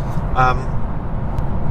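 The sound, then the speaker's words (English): Steady low rumble inside the cabin of a V8 Lexus cruising at motorway speed on the M4 motorway, a constant engine and road drone with a brief voice-like sound near the start. “Direct from the M4 motorway in the cabin of a V8 Lexus”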